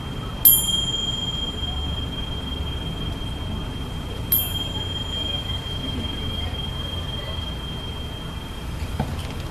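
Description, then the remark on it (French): A meditation bell is struck twice, about four seconds apart, each strike ringing out with bright, shimmering tones that slowly fade over a low, steady background hum. “Libéré, enfin, par la cloche.”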